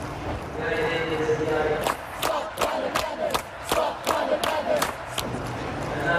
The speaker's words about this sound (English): They're shouting, stop climate madness. The people are inside this room talking about climate change.